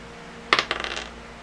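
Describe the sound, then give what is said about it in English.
A six-sided die is rolled: one sharp, bright clack, then a quick flurry of smaller rattling taps as it tumbles and settles, heard alone with no talking. “It's just a D6.”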